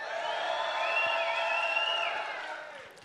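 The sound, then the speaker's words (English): A church audience in the West venue of the Kearney campus erupts on a count of three in a sustained burst of cheering and whooping to show they love their church, a dense wash of many voices with a few high shrieks, holding loud for about two seconds before tapering off. “On three, you get a cheer if you love your church.”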